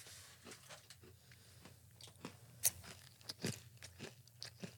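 Wet chewing of a soft grape Hi-Chew candy: irregular sticky smacks and squelches with a few sharper clicks, steady for several seconds, no talking.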